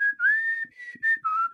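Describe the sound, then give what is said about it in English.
A person whistles a short melody of sustained, clear notes in a song verse over a slowed-down strumming pattern. The notes glide and shift in pitch, with a few soft low thumps underneath between phrases. “So that's where I'm doing the brum, and then I added the whistles.”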